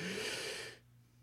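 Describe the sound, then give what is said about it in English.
A person vocally imitates a cat's sharp inhale: one breathy, raspy intake of air lasting under a second, fairly loud, then it cuts off into near quiet. “And he, like, takes a sharp inhale.”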